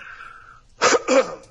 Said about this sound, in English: Sorry, I cough there.